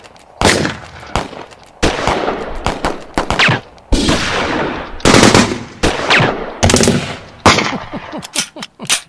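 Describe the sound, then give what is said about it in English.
Rapid bursts of loud practice gunfire crack out in quick succession, some shots overlapping into fusillades with echoing tails, then a final flurry of sharp, faster shots. “Let's go out with a bang and do a little practice All shooting.”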